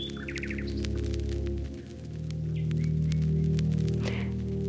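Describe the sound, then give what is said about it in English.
A nightingale sings in varied bursts: quick trills, sharp clicking notes and short whistles, heard over a steady low droning hum. “Nightingale's song is incredibly complex.”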